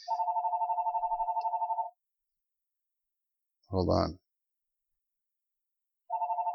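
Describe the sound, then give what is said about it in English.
A telephone rings with a rapid warbling trill, one long burst, then a pause where a voice speaks briefly, then the ringing starts again. It sounds clear. “Oh, there's the phone. Now there's somebody's calling.”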